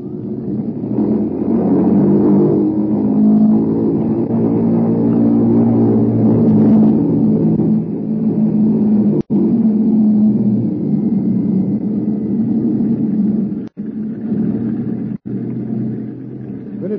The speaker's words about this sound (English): The mills of the guards began to grind, I would say, while we were completing our engine run up at the head of the runway.